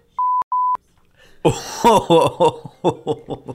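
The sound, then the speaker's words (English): Two short, clear electronic beeps from a phone's notifications sound in quick succession as someone tries to turn the phone off, followed after a brief pause by a burst of chuckling laughter. “Pull down the thing and then hit the do not disturb notification.”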